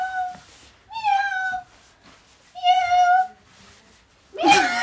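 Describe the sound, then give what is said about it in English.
A person imitates a cat meowing twice, each drawn-out, wavering meow about half a second long, fairly loud, followed by a brief burst of laughter or breathy noise. “Meow.”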